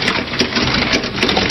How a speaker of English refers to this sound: The rain starts to pick up.